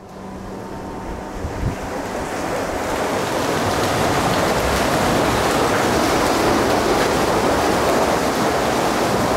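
A water wheel that generates electricity churns in rushing water, a dense, steady roar that swells over the first few seconds and then holds loud, with a faint low knock early on and no voices.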